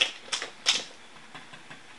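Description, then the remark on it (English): Dice clatter across a hard tabletop in a handful of sharp, uneven clicks, some louder and some softer, with brief quiet gaps between them and no voices; the dice are rolled for a persuasion check. “Pull it off the table and put it back on the table. It is a 7.”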